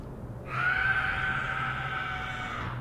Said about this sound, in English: To the woman that's screaming, you're more sane than the rest of us because you actually are doing something about the dissent that you feel inside your heart and your body and your spirit.